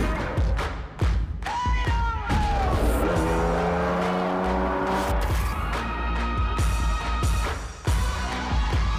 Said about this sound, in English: My 911 is like a rough and ramble, dirty race car.